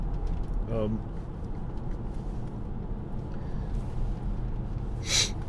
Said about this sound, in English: Sorry, I'm going to have to spray my nose. I have some allergies. It's pollen season here, otherwise known as hell on the wind.